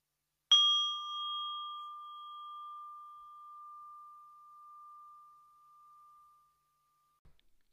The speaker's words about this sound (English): And I'm inviting the bell that invites you to concentrate on your breathing and yourself.